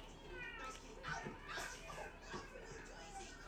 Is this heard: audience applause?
no